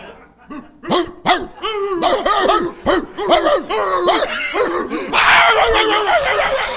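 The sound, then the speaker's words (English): A person loudly imitates a dog, letting out a rapid string of yelping barks that run together for several seconds and end in a rougher, noisier burst. “What are we going to do, start barking at each other?”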